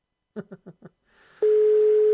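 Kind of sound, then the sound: signal or alarm, telephone ringtone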